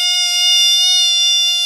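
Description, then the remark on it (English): A steady, piercing censor beep holds one high pitch for nearly two seconds, loud, completely covering a spoken name beneath it. “Just beep it out.”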